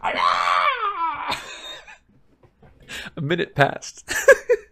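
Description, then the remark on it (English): A voice imitates Hagrid's shrill, wavering shrieking cry, like the call of some monstrous bird, lasting about two seconds and sliding downward in pitch, followed by a short pause and then someone speaking. “Hagrid gave the shrieking cry again.”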